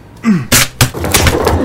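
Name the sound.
door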